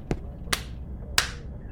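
Three sharp, bright claps spaced irregularly apart, the first one softer and shorter, the last two louder with a brief ringing decay, over a low steady background hum.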